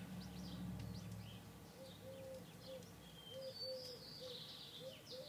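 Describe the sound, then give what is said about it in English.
Several birds chirp and tweet outdoors in a community garden, with scattered high calls over a steady low cooing, fairly quiet, with no talking. “You hear the birds? Quite a little bird sanctuary happening now.”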